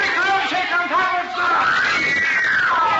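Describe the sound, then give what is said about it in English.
A crowd of kids around a stage door screams and shrieks together in a loud, continuous high-pitched din, with voices rising and falling over one another for the full three seconds. “If he can get through those kids around the door.”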